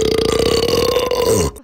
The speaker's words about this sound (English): And now, belch number three.